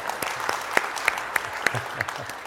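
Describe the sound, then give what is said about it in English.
Scattered audience clapping: a handful of sharp, evenly spaced claps stand out above a steady, moderate wash of crowd noise, sparse rather than a full round of applause. “No applause for that.”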